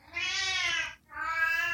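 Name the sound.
cat meowing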